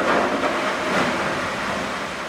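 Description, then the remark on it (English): A ship's hull breaking through sea ice en route to Thwaites Glacier, its heavy nose slamming on thick slabs of ice to crack them: a loud, continuous grinding rumble with a rough, hissing texture that swells briefly about a second in, with no voices. “The ship slams its heavy nose on thick slabs of ice to crack them, then sails through the black gash of open water.”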